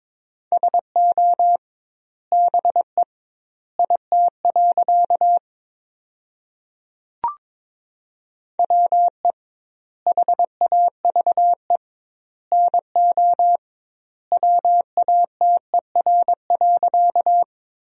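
A steady mid-pitched tone keys on and off in rapid dots and dashes, Morse code sent at about 22 words per minute, spelling sentences built from the top 100 words with double word spacing, with grouped bursts separated by short silences and one brief click midway.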